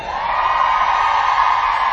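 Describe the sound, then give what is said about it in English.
A crowd of single women in the audience at an ACR church conference screams and cheers as loud as they can in a loud, sustained, high-pitched roar that holds steady for the full two seconds, with no individual voices standing out. “I really like doing this, but please scream as loud as you can.”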